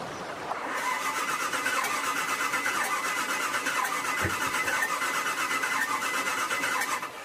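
A boat motor on a lake cranks over and over for several seconds in a rapid, steady chugging whir that never catches or roars to life. Fairly loud, with no voices.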